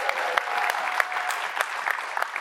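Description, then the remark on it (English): A room full of people claps steadily, a dense wash of overlapping handclaps with a few sharper individual claps standing out, sustained at an even level throughout. “Shall we give her a round of applause?”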